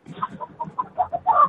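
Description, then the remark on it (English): Chickens on a chicken ranch, heard over a phone line, cluck in a quick, irregular string of short, throaty bursts, building to a louder, busier squawk at the end. “The guy is on the line on his chicken ranch.”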